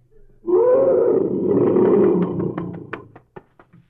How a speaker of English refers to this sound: Look, a huge lion. Steady. When a lion growls like that, he doesn't mean any trouble. But when he roars, that's when the cowards climb the trees.